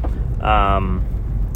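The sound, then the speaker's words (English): A car idles with a steady low engine rumble while stopped at a red stoplight, and a brief tonal whine rises over it partway through before fading. “I was parked at the stoplight for a long time, and I scooted forwards a little bit to get the light to notice that I was there, because honestly it was probably red for a solid 5 minutes”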